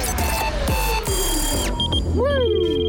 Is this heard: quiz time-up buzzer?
yes